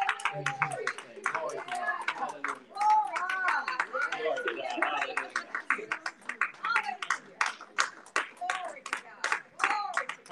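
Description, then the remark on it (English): A crowd claps steadily in praise as the pastor comes, sharp overlapping hand claps forming a continuous rhythmic patter, with many voices calling out and murmuring beneath the applause throughout. “Give up hand praise as the pastor comes.”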